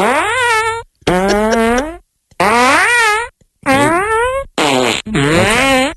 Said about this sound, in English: This is getting weird. Those are some question mark farts.